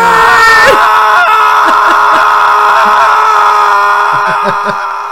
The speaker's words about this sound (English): Now our listeners all know that it's not us actually screaming.